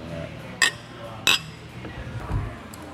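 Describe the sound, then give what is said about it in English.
Glasses clink together twice in a toast, two bright, ringing taps about a second apart, over a quiet room hum and a soft low bump afterward. “Go cheers. Go cheers. Cheers, guys.”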